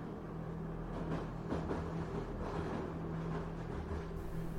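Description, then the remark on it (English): A steady, heavy rumble of a train rolling through a tunnel, with a low droning hum and a dense wash of noise that stays loud and even throughout, with no voices. “The sound of the train rumbling through the tunnel echoes off the walls.”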